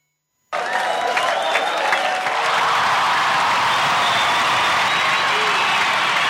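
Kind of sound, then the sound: crowd, audience cheering and applause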